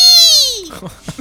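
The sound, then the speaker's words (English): A person voices a creature's screech as it takes a good amount of damage from a hit in the shoulder: a loud, strained, high-pitched squeal that slides steadily downward for over half a second, then breaks into a few short, rough vocal bursts. “He takes a good amount of damage and he like screeches.”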